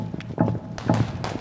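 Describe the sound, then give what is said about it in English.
Horse hooves clip-clop in an uneven rhythm, several sharp strikes at moderate loudness, with no one speaking: Cossacks arriving on horseback with guns and lances at the house of three-year-old Paderewski. “And one day, when Paderewski was just 3 years old, they turned up with horses and guns and lances.”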